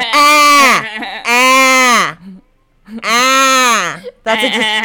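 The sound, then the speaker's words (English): A person imitates a bleating goat, sounding sheep-like, making four loud, wavering, nasal bleats with brief pauses between them. “Can you make a goat noise?”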